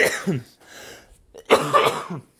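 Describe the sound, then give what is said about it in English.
A person coughs: a couple of harsh bursts, a brief raspy pause with a breathy throat sound, then another strong, rough cough that trails off. “Dude, we need to get you an actual cough button.”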